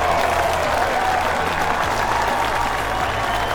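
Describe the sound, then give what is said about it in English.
The Warner Park baseball crowd gives a standing ovation as Alcides Escobar rounds the bases after a home run: a steady, loud roar of clapping and cheering that holds unbroken throughout, with no clear voices standing out. “He rounds the bases and gets a standing ovation from this Warner Park crowd.”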